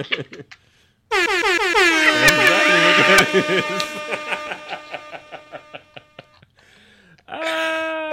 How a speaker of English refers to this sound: All right, what else they got on here? They got Air Horn Blast. Okay.